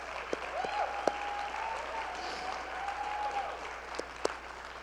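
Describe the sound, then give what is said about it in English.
An audience claps in steady, dense applause, a continuous wash of many hands with a few sharper individual claps standing out, and a thin sustained tone running faintly underneath. “Thank you for clapping.”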